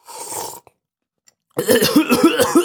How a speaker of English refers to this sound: And it almost kills him. Cypher pounds on his back. Good shit. Dozer makes it. It's good for two things. Degreasing engines and killing brain cells. Red face. Neo finally stops coughing.